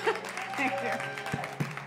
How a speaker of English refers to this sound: Another round of applause for the message. Oh, wow, that's loud.